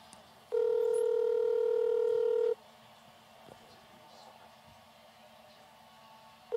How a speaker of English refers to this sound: ringing. It's on speaker.